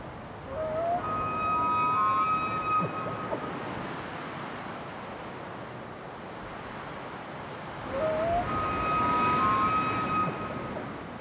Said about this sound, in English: Let's see if we can tease out what kinds of sounds are competing with the wind in the trees. How many different layers? So let's go back now and hear that elk, among other things, that elk bugling again.